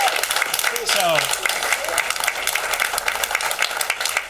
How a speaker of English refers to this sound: Give them a round of applause for even offering.